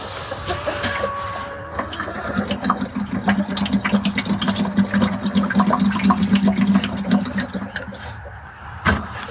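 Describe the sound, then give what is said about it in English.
Water splashes and gurgles steadily as it is poured to top up a chickens' drinker in a new building, a continuous pouring sound with a low hollow filling tone, ending with a brief clunk. “top their water up because it's a new building, or new to me.”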